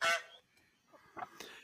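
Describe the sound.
A person imitates a goose with a loud, nasal honk at the start, followed by a couple of softer, breathy honking sounds trailing off.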